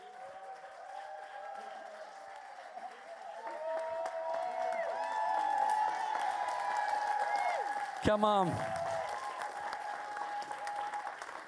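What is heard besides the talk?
applause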